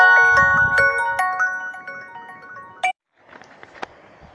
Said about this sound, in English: Sorry about that. I left my phone on.